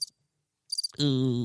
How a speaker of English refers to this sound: Oh, that's a nice. I love the crickets. That's a nice. Yeah, that one's staying on there. I know that's stock, but it's freaking awesome, dude. Staying on there, little cricket.